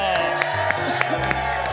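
A crowd applauds, with a steady wash of clapping and a few sharper claps standing out at a regular pace, blended with cheering and chatter from the audience.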